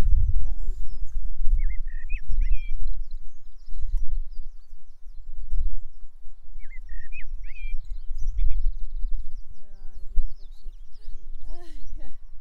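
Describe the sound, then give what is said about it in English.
A male blackbird, perched at the top of a cliff looking out across Newhaven, sings fluty, warbling phrases in short bursts with pauses between them, over a steady low rumble and some higher chirping in the background. “Male blackbird.”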